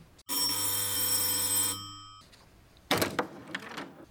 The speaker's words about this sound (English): The doorbell? Okay, but if I get busted... Ring it!